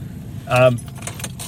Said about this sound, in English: Sorry, dangling keys in front of the microphone.